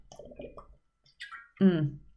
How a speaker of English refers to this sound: So good. Little glugging noises for you.